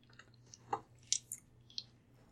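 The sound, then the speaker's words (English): Quiet wet chewing of pepperoni with a few sharp smacking clicks and squishy mouth sounds over a low background hum, no talking. “What are you doing? I got like a pepperoni.”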